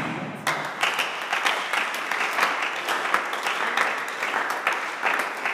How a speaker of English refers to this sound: This is clapping.